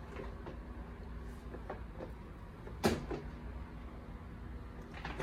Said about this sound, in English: give me a second here, move the chair out here